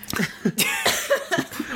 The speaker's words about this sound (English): Stop coughing. I can't.